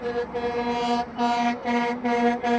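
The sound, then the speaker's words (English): A loud vehicle horn honks repeatedly in long, blaring blasts separated by brief gaps, steady in pitch, with no talking over it. “You can honk for Gaza, but you can't honk for freedom.”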